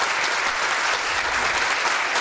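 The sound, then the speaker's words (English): Steady, dense applause from a crowd for the 7th anniversary of the Spooky South Coast show, many hands clapping at once in a continuous wash of sound that holds at an even, fairly loud level throughout. “We get like 3 more seconds of applause.”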